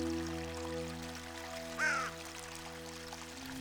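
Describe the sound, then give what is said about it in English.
A single crow-like caw from a solitary bird rings out once around the middle, in the distance, over a steady low hum and the faint trickling water of a babbling brook in the background. “In the distance, you hear a solitary bird.”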